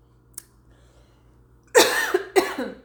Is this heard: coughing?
yes